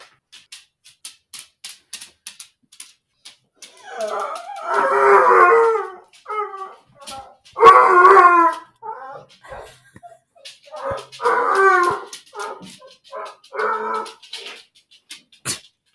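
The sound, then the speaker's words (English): A dog howls and yodels excitedly in several long, wavering bursts, broken by short whines and yips, with light clicking and tapping sounds in between, as a man of the household gets home from work. “That is what one of my dogs does when my husband gets home from work.”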